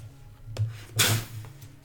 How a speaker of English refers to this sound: Door closes.